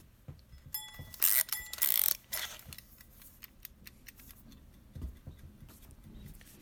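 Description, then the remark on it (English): A mechanical wind-up timer is twisted to set it for 20 minutes, giving a burst of rapid ratcheting clicks, then settles into a quiet, steady ticking with small handling noises and no one talking. “Whatever you're doing, I hope you'll set your timer with me and work for 20 minutes.”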